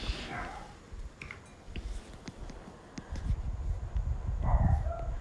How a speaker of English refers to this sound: I can hear my dog barking. Something did bang on the way past. I don't know what that was. It's not a ghost, people. It was just the dog all het up about something now. Probably the possum getting out of bed.